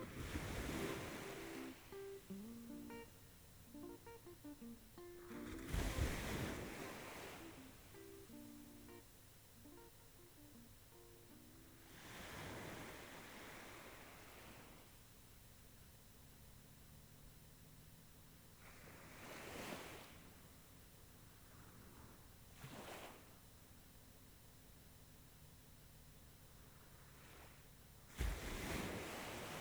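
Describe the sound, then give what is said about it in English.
Gentle waves lap against a shore in soft, irregular surges, a few swelling louder before receding, with light wind noise and a low steady rumble underneath. No voices. “Now you're all alone here, with the peaceful sound of the waves lapping against the shore.”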